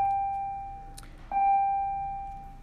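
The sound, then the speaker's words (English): A bell rings twice, the second strike about a second after the first, each clear metallic tone sustaining and slowly fading. Nobody speaks. “Sorry about the bell.”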